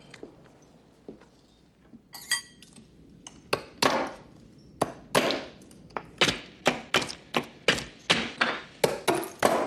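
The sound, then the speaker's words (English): Ice being chopped into rough chunks for a drink: a few scattered clinks and knocks, then a steady run of sharp, hard strikes in quick, even rhythm, each with a bright, glassy crack. “You have something against ice cubes? I like rough edges.”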